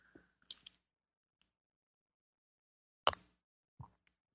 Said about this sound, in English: It's time for me to have a sip of my tea here, my yummy rainforest tea.